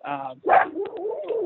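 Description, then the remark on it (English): A dog gives a sharp bark between drawn-out, wavering whines and yowls, loud and steady for the whole moment with no other sounds around it. “Sorry, dog barking.”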